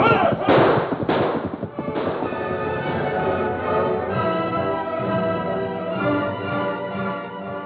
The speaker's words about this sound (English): Suddenly, the ranger listened, then spoke. Tonto, I thought I heard distant shots. Oh, me not hear them. Me listen. Me hear them now.